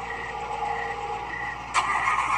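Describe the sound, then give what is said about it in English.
A car engine cranks with a steady, grinding mechanical drone that never catches and settles into running, then turns suddenly louder and brighter near the end. No one speaks. “Damn, why my car so break down?”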